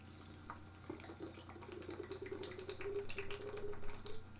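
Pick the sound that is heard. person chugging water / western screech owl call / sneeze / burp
person chugging water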